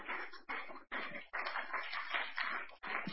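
A crowd giving a hand clap of praise to the Lord as a preacher comes up to preach, with dense, steady hand clapping that runs the whole time, briefly dipping a few times before swelling again, loud and continuous with no voices standing out.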